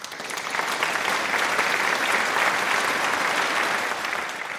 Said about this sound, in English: When the canned applause stopped, Bonnie closed the curtain